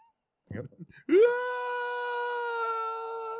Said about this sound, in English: Showcat is looking a little worried here. What, that you're screaming into the microphone? Yeah, she was just looking at me like, what is wrong with you?